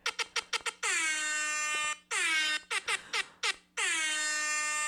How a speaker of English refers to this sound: I'm glad I got the air horn.